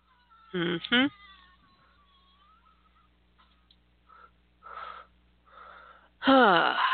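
A baby raccoon cries in loud, high, wavering squeals: two quick calls, a few softer chirps, then a long shrill wail at the end, with no talking.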